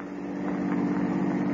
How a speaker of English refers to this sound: Little did she know that close behind, as she hurried down the darkened street, a car was slowly following her.